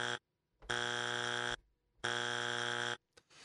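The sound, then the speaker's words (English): A loud, harsh game-show buzzer blares three times in a row, each blast a flat, raspy tone lasting about a second, separated by short silences, with no voices. “Three buzzers.”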